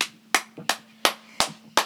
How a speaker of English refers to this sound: Oh, those, it's the claps. The claps affect the volume.